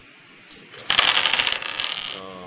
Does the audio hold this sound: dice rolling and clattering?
yes